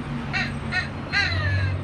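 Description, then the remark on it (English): A crow caws three times in steady succession, harsh and nasal, over a low rumbling background with no one speaking. “That, my friend, is a crow.”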